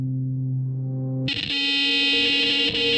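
A cell phone emergency alert warning of a missile threat to Hawaii sounds continuously: a harsh, low buzzing drone that abruptly jumps to a piercing, high-pitched blaring tone after about a second, loud and steady with no talking.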